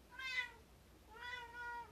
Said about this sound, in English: Sorry, my cat wants to play.